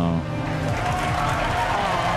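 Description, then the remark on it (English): A crowd cheers and shouts during a rocket launch in a steady, dense roar of many voices, loud and continuous throughout, with no single voice standing out, as the rocket, having cleared the launch pad, loses engines and tumbles. “I like how everybody's cheering.”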